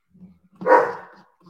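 A single loud, sharp dog bark rings out, preceded by a faint low murmur and followed by quiet background noise.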